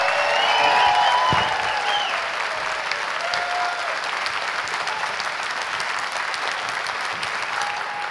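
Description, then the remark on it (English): A sustained burst of audience applause for Mr. James Cosmo at the end of a question session, dense crackling claps swelling loud at first then holding steady for several seconds, with faint whoops and crowd voices mixed in. “Please, round of applause for Mr. James Cosmo.”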